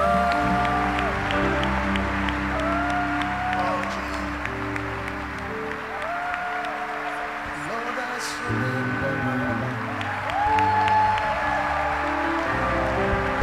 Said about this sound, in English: Your clapping is very anemic. Yeah. I say your clapping is anemic. Do a better clap offering, a better clap offering.